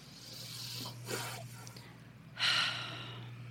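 Two slow, airy deep breaths taken during a guided meditation, an inhale followed by a louder, sharper exhale, over a low steady hum.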